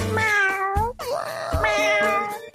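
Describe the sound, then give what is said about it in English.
A cat meows loudly, letting out a few drawn-out, wavering cries back to back with no pause for quiet and no one talking. “And instead of killing that cat, I saved it.”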